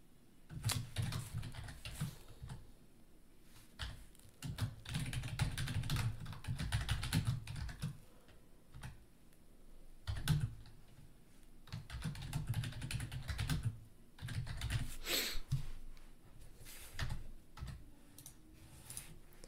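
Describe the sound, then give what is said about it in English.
Someone types on a computer keyboard while tweeting out a link, in quick, uneven bursts of clattering keystrokes separated by brief pauses. The clicking is steady and moderately loud, with no talking. “I hate tweeting while I'm...”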